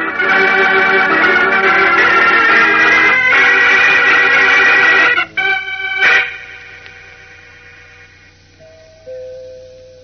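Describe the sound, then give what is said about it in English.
A doorbell at Tom McVane's door rings with a loud, sustained, bright chiming buzz for about five seconds, then gives a couple of shorter rings that trail off into fading tones, with no voices. “That's no use ringing anymore, Kent. McVane won't open the door.”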